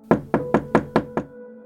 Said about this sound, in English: I'll knock on the door.